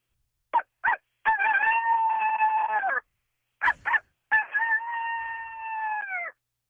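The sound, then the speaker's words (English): A person imitates a coyote call twice over the phone: each time two quick, sharp yips followed by a long, loud, wavering howl that holds steady before dropping off, with no other voices. “Can you – is it too hard to do a coyote, or what, do you think it wouldn't sound good over the phone?”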